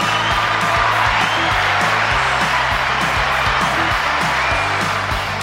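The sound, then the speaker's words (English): Steady, dense clapping like a recorded applause effect runs throughout at an even level, layered over a rhythmic low bass line, with no talking. “Oh, I thought we'd get a little more applause than that.”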